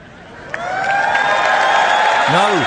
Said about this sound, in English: No. Don't applaud that.